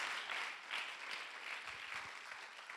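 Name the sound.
audience clapping hands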